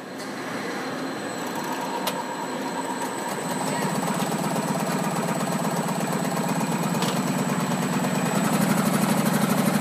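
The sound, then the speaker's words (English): A Harley-Davidson motorcycle engine runs steadily on a test stand at the company's powertrain operations plant, a continuous rumbling drone growing slightly louder partway through and again near the end, with no one speaking. “works in the division that assembles and tests the engines for Harley-Davidson motorcycles.”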